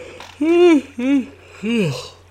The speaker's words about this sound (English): I have a yawn coming on.